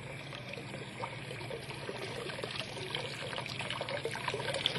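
Water trickles and pours steadily through a lifted wooden gate, a continuous bubbling, splashing flow that grows slightly louder over the few seconds, with no voices present.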